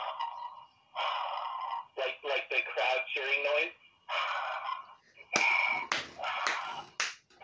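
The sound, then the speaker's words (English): A single voice mimics a cheering crowd with breathy, hissing bursts of noise, rising and falling in a string of uneven surges, fairly loud. “Hey, as I do, I'm making the, like... Sound like a bird that crowd cheering noise.”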